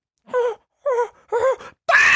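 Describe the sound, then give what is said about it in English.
A person imitates monkeys moaning during sex: three short, wavering, mid-pitched moans with pauses between, ending in a harsher, breathier outburst, fairly loud and with no other talk. “I could imagine monkeys just be like, just...”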